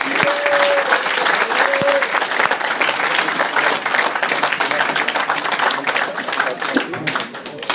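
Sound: audience applause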